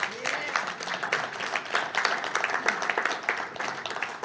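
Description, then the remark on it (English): An audience applauds the Lord during a sermon, steadily for several seconds, a dense wash of many hands clapping with sharp bright spikes throughout, holding at a fairly even loudness with a few scattered voices mixed in. “You should give the Lord a big round of applause for that.”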